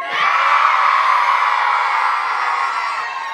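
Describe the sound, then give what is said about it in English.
A crowd of voices joins in one long, loud, sustained moo, imitating the moo of a gaur, an enormous creature. The group holds the note steadily for about three seconds before it fades slightly. “Should we try mooing? Okay, 1, 2, 3.”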